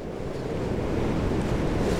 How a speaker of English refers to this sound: This rain is a devil. It comes in great torrents and then relents, held back by this overconfident wind, and then comes at you again.